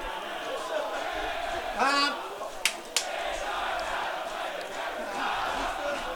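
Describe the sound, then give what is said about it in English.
A team of players belting out their team song as a loud, rowdy chorus of voices, with one brief raised shout and two sharp bangs cutting through midway. “We can hear the boys belting out the team song down below us.”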